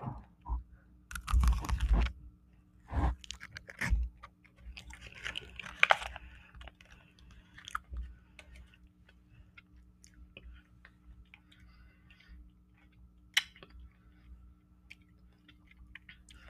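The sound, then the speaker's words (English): A loud crunchy bite into a thick strawberry, followed by several wet chewing crunches over the first few seconds, then quieter mouth sounds and faint clicks trailing off. “Look at that. That strawberry. Thick. Ready? ASMR, ASMR. Crunch.”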